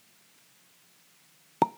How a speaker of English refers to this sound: I got to give it the cork pop, though.